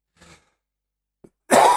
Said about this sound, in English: I'm going as long as I can, continuing talking without taking much of a breath, that sort of thing, because I'm aware that when I do, I'm going to cough.